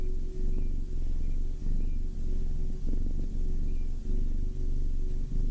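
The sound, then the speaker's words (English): A kitten purrs steadily, a low continuous rumble with a gentle rhythmic pulse from its breathing, heard alone with no talking. “Now let's just sit quietly for a while and feel the soft fur underneath your fingers. What a sweet little kitten.”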